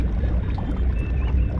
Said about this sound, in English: And the water that you hear on my left is actually coming, this sound is coming from a beautiful tube-shaped big aquarium.